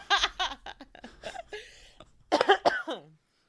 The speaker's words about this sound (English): Sorry. Oh, you're good. Sorry, I had to sneeze. I needed to cover that up.